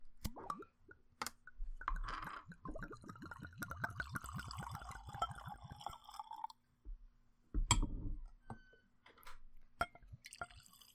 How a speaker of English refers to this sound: pouring out a second glass, a libation for his wife, so that he does not immediately lose.